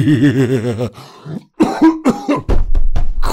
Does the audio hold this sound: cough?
yes